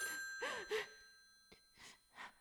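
A telephone bell rings on steadily and faintly while someone takes several heavy, audible breaths and sighs.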